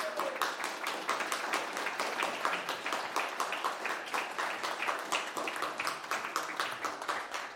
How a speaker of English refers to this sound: I give a round of applause.